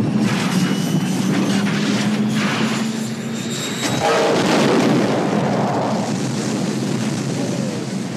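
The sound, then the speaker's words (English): Luke's spacecraft crash-lands on Dagobah in The Empire Strikes Back: a loud, continuous rush of engine noise and rumble, with a whining tone fading out, then a heavy crash and churning, splashing debris noise that settles into a steady wash. “Luke crashes on Dagobah.”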